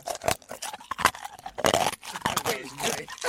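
Someone chewing with wet, crunchy mouth sounds that come in irregular bursts, moderately loud with no talking over them.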